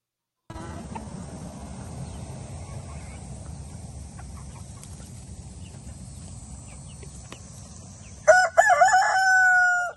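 bird calling loudly

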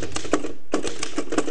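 typewriter typing

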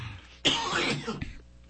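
coughing and throat clearing

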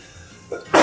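sneeze

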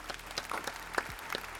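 clapping

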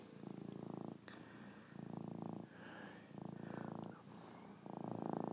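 cat purring

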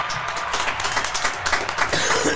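round of applause

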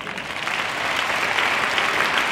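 audience hand clapping

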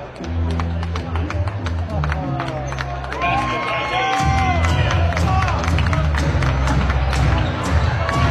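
basketball arena crowd cheering

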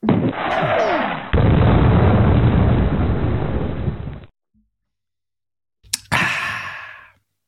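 sipping beer

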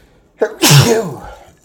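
sneeze

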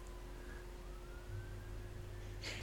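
police siren passing outside

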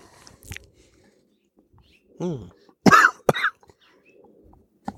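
coughing

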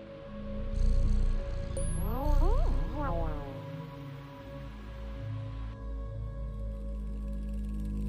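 cat meowing and purring

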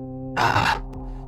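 man clearing his throat

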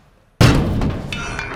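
door slamming shut

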